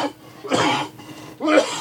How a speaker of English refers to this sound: There's that cough I was telling you about.